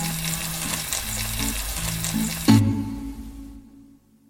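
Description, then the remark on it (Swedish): Oxtail pieces sizzle and crackle steadily as they brown in a hot pan for several minutes, turning golden brown, a dense hiss with a sharp burst midway before the frying fades away near the end. “Nu har du fräst ganska duktigt här i åtskilliga minuter.”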